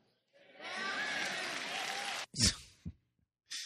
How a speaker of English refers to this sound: They're all clapping, but he's not actually preaching God's law.